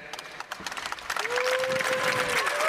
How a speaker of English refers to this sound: That's Open Door. Okay, I kind of got that clap. That was like a 5 out of 10 clap.